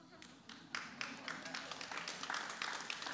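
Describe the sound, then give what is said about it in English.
An audience claps, a soft scattered patter that swells after a quiet opening and continues unevenly throughout, with no distinct speech. “Yeah, the economists in the crowd are not clapping, but everybody else, that's really good.”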